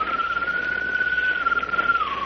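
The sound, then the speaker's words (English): A single long, bird-like whistle, coming from the direction of a light on a mast, holds one steady mid-high pitch for about two seconds, then dips slightly lower at the end, over a soft hissing background with no voices. “Now I suppose you'll tell me a light can whistle like a bird.”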